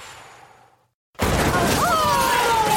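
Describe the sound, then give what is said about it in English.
After a moment of near silence, a trophy is smashed by a thrown football with a sudden loud crash, followed by a sustained burst of clattering, noisy debris with a faint ringing tone. “He just smashed my trophy.”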